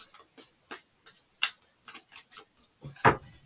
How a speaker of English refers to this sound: Still using Doodle Tarot. It's probably the last day today. Just finishing up shuffling.